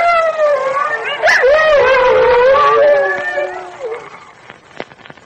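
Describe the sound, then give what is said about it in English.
A long, wavering wolf howl rises sharply and then slowly sinks for about four seconds, loud, fading into a few faint clicks and rustles at the end, as gathering wolves close in. “Well, the wolves are closing in”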